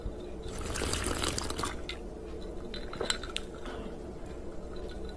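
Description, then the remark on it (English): A wet, slurping gulp of a cocktail swells for about a second, followed by a few small swallowing clicks and faint liquid sounds, with no talking. “Taking a big sip.”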